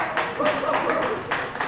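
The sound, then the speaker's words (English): An audience applauds a poet after the judges' scores are announced, in a dense, steady wash of clapping, with whoops and cheering voices rising over it throughout the short burst. “Applaud the poet.”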